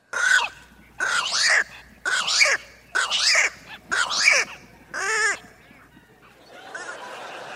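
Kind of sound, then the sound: bird, bird calls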